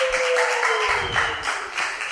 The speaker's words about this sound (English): Guys, put your hands together one last time. If you have been to this show before, personally speaking, put your hands together, handsomes.